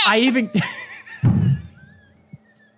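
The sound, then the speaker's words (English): A person's voice imitates a goat's bleat with a wavering, quavering tone, two or three shaky cries in a row, fairly loud, trailing off into quiet. “The sound a goat makes is a bleat.”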